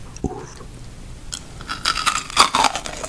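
Someone crunches into a Crunch candy bar as a mukbang eating example: an early sharp bite, then a dense run of crackly, wet chewing bursts that grow louder toward the end, with no talking.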